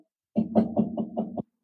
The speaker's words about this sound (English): Yet another knock on the door, right? Promising of everlasting life.